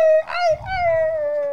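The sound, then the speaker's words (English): A dog lets out a sustained, tonal howl lasting the whole moment, wavering slightly in pitch with a brief yelping break near the start, clear with no talking. “And big bark. Go ahead. I know you got a bark in you.”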